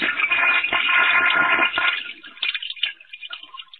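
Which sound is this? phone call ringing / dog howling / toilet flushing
toilet flushing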